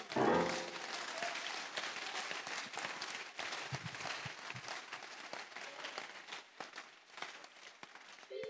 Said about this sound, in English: Come on, clap for Jesus.